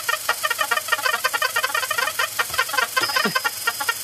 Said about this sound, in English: So this is a video of I think the Rhythmicon. But when you listen to it, I would argue that it's not really a drum machine whatsoever. Sounds like a flock of baby ducks.